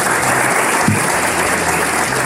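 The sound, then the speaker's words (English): An audience at Humboldt State applauds steadily at the end of a lecture on witchcraft, many hands clapping together in a dense, even wash of sound that stays loud throughout without any voices. “A big Humboldt State round of applause.”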